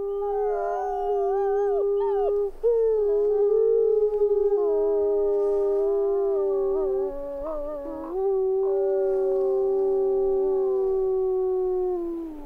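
Several Rocky Mountain wolves in Yellowstone National Park howl together in a sustained, overlapping chorus, long mournful tones sliding and wavering against one another for the whole stretch, loud with no talking.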